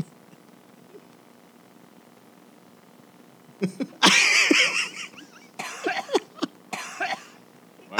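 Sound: coughing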